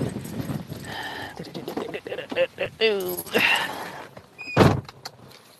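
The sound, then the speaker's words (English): Shuffling and rustling as someone climbs into a car on a windy day, with a brief muffled voice and a whirring hum, then one solid car door thud near the end before things go quiet. “Let me go in my car. It's kind of windy.”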